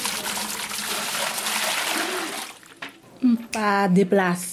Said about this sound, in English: opens the metal cover to a cistern to fetch water.